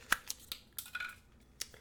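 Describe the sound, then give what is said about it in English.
Crisp crinkling and snapping as a foil zip strip is torn away from the neck of a spirit bottle being opened, a handful of sharp rips and crackles over a couple of seconds with no talking. “It's got a nice foil on the neck and a little zip strip here. Pull it off, get that.”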